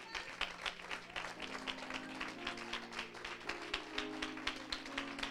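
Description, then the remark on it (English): An audience claps to God together in a steady, rhythmic beat, sharp and loud, while sustained low musical tones hum underneath throughout. “Let's clap to him like the word benefited us this morning.”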